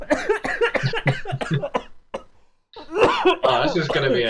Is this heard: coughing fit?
yes